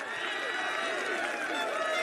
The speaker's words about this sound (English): Here we go, a little Homelander getting applause.